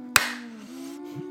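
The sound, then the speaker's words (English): Two people clap together after counting off one, two, three, making one sharp, loud clap near the start that quickly fades. A steady low hum continues underneath, and no one speaks. “Can you clap with me? Are we supposed to do it together?”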